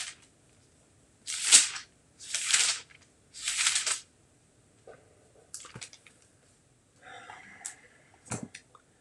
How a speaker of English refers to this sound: Many years ago, I was in a church where we were thumbing through our Bibles to find a passage, and the pastor remarked that when he heard the pages turn, it probably was the same sound angel wings made. I'll show you.